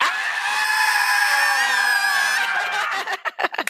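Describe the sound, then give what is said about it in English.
A large audience at a panel, standing with arms in the air, screams loudly together on a count of three in one sustained, dense roar for about three seconds, then breaks off into scattered cheers and shouts as it fades. “I want you to put your arms in the air, and then I want you to scream as loud as possible on three.”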